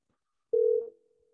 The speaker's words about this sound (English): I'm gonna call my guy. We're gonna have another guest on to the show. I'm give him a call. He's a surprise guest. He better answer the phone.